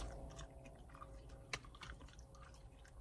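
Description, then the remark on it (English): Quiet chewing of a dark cherry chewable multivitamin, the first food chewed in over a month after surgery: irregular soft crunches and wet mouth clicks over a few seconds, with one sharper crunch midway and no talking. “So this is a quick video of the first time I chewed food in well over a month.”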